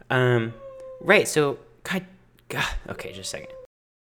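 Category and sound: animal, cat meowing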